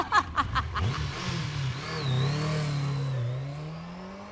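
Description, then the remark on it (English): A motorcycle carrying a passenger revs in a few quick bursts, then settles into a steady, rising drone as it pulls away around a bend, loud with no voices. “I watched Karen vanish around the bend and did my best to hang on to Juan's motorcycle.”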